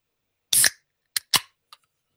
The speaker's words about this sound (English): Okay, wait, before you start, do you want some ASMR? I feel like you're going to do it anyways, so sure. Okay, here you go. We got it. Just a pop can. Just a pop can.